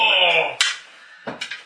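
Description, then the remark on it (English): Dice are rerolled onto a hard table, clattering in a few sharp clacks, a quick burst followed by smaller bounces, right after a brief stretch of someone talking. “Reroll on the table.”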